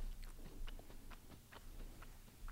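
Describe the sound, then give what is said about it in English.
Close-miked chewing, with a steady run of moist, crunchy bites and smacks repeating every fraction of a second at a loose, irregular pace. No one speaks. “I hate that you're chewing into the mic. It's so gross.”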